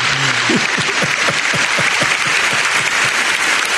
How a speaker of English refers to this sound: I'm going to give him, you know, a short applause.